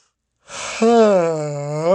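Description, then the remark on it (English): A breathy intake of air gives way to a long, drawn-out voiced groan that sags slightly in pitch: one loud, wide-mouthed human yawn with no words. “Did I just yawn and you yawning right now because you heard me yawn?”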